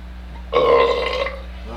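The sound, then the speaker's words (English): A single loud burp into a new microphone erupts abruptly, rumbling with a rough, tonal quality for under a second before trailing off, with no talking around it. “But that did make a burp sound good.”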